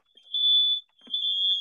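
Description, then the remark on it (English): A shrill, piercing smoke alarm beeps twice in a row, each long high-pitched tone lasting about half a second with a short gap between, loud, with a faint thump in the pause. “Now it's like sounding like a second alarm's going off.”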